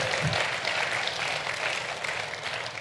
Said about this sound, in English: Applause, applause.